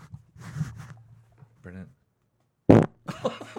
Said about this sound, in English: got a fart out. Dude, I ate these. That was real.